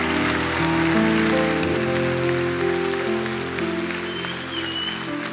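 A church audience claps steadily in a dense, continuous wash of applause, with sustained keyboard chords ringing underneath. No one speaks, and the clapping holds fairly even throughout.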